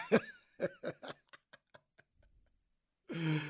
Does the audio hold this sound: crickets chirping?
no